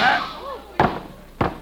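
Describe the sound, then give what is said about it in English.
Two sharp gunshots ring out about half a second apart, fired by a woman and hitting a man, each a loud, abrupt crack with a short decaying tail, following a brief voiced sound at the start. “She got me. I'm shot.”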